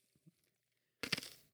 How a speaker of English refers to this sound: All right. All right, please don't chew ice into the microphone.